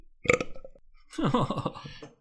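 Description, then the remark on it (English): A voice imitates a burp: a short throaty burst, a brief pause, then a longer, croaky, drawn-out belch, fairly loud, with no other talk. “Insert fake burp.”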